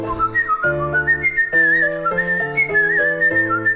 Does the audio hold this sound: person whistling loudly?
yes